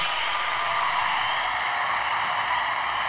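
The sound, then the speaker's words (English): A recorded crowd cheer played as a sound effect to welcome a guest on a show: a dense, steady roar of many voices and noise that holds one even loudness for about three seconds, with no one talking over it. “Shall I play the cheer for you?”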